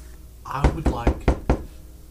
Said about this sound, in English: Feel like, our only choice is to... I'd like to knock louder.